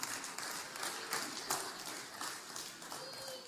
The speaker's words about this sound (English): Somebody clapped the loudest, so here you go.